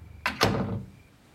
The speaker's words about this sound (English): You open one of the doors on the left and pull me inside.